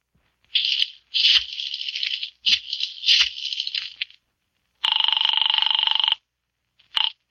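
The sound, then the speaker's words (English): A telephone rings in several high, buzzing bursts, followed by a longer steady tone and a short final chirp. No one speaks. “I'll give him a call now.”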